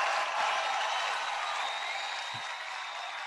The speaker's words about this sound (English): Let's get a round of applause for that.